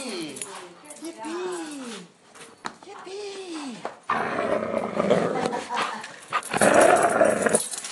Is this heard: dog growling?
yes